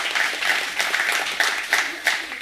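A crowd claps steadily, a dense wash of many hands with a few louder bursts standing out, filling the room at moderate volume without any speech.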